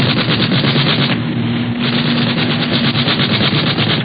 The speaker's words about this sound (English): Firing at us. Firing and missing.